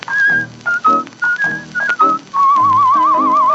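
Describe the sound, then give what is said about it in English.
Melodic human whistling in a cowboy song carries a tune over a steady musical accompaniment. It starts with short phrased notes and then slides into a long, wavering warble. It sounds clear. “Just a whistling cowboy.”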